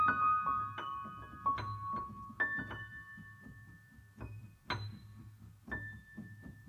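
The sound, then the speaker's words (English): Sparse, high-pitched bell-like tones ring out one at a time and linger, resonating over a soft, steady low eighth-note walking groove of percussive notes underneath, in a movement of a recorded album. “so I created a whole nother movement about it, in which there's these kind of like sparse, high pitched tones, and they sort of resonate like bells.”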